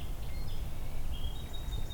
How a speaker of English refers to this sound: A song sparrow.